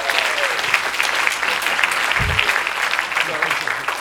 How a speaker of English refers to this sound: So a round of applause for all our dragons.